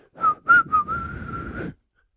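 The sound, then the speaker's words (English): A person whistles: three quick rising notes followed by one long, steady held tone, clear and fairly loud with no other sounds around it. “I mean, he's only ever a whistle away.”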